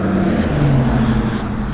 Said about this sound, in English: Big truck driving by. I'm not sure what nature we're gonna possibly hear, but you definitely hear the freeway.